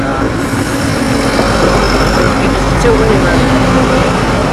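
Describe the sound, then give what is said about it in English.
A diesel passenger train rolls through a station, a loud, steady low rumble and engine drone with a faint high whine running over it for the whole stretch. “I've just had the train sound there, a bit of atmospheric really, and we got that as well as it goes through.”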